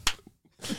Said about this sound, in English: Slow clap. Nice. Give yourself a little clap.